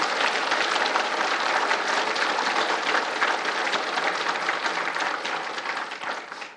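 A crowd applauds steadily for the author of the book Dispatches of D-Day at an Army Heritage and Education Center event, a dense wash of many hands clapping at a fairly loud, even level that tapers slightly toward the end, with no voices standing out.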